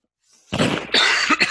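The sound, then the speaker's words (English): A loud cough bursts out in two or three harsh, breathy pulses after a short quiet intake, with no talking around it. “Excuse me, that's a cough.”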